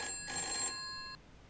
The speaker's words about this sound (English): Wait, is the phone ringing? Yeah, it looks like we got a call coming in, which is really weird.